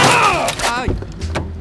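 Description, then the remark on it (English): A car strikes a cyclist in a bike lane in Paris: a drawn-out pained vocal cry slides downward, followed by a couple of dull, sharp impact thuds, all fairly loud over a steady low rumble. “Vous venez de me percuter dude, avec I votre think voiture!”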